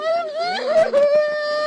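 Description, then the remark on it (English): A mother in hysterics wails in distress as she holds her choking three-week-old baby girl outside a house where police answered an emergency call; a sustained, strained high-pitched cry that rises and breaks with a brief catch in the middle, loud and continuous throughout. “What follows is pure drama as mom wails.”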